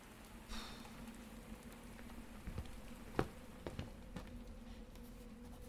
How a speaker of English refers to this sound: The sound of rain on the roof nearly put me to sleep. In fact, I think I even nodded off a few times.